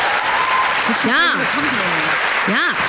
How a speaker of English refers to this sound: A big round of applause